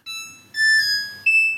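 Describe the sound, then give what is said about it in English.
A smart washing machine's power-on chime as the power button is pressed to start a mixed-load wash: three clear electronic tones in a short melody, a middle note, a lower, longer one, then a higher one again, sounding alone with no talking. “I've got a mix load here, so I'm going to press my power on, and it's going to make a nice little sound here.”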